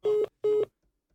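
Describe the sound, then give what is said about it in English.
Two short, steady electronic beeps in quick succession, like the tone a phone gives when the line drops, sounding clear with silence after. “the dog phone cut off.”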